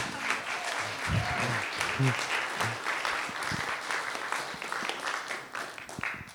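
An audience applauds a new engineering graduate from Duke, steadily for several seconds, a dense wash of many hands clapping with a few brief voices rising under it before the clapping thins slightly at the end.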